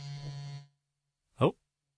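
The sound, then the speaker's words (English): An electronic cane buzzes in a cramped room with a steady, low, rough drone for about half a second, then goes quiet before one brief, louder burst of sound. “Because it's buzzing away like crazy because obviously I'm in a cramped room here.”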